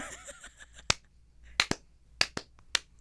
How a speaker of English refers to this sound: Slow clap.